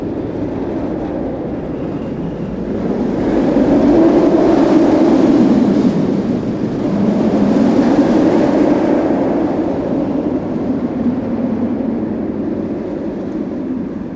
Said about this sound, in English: So I'll show you, here's the Batman, which is a big steel coaster that this is the one that's just the cars kind of out in space.